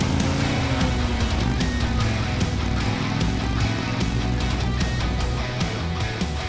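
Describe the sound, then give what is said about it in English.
A loud, continuous motorcycle engine drones as the motorcycle is ridden toward a plume of smoke, its low rumble steady with a slight rising pitch early on and rough, pulsing texture throughout, with no voices. “You drive towards the plume and smoke, piloting your motorcycle.”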